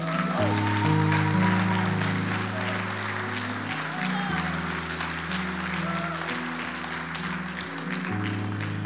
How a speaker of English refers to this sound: Would you guys clap?